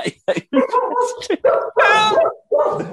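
A dog barks in a series of short, loud bursts, one stretching into a longer, drawn-out yowl before a final bark.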